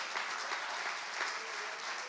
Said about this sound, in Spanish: De un aplauso al Señor en este día, vamos.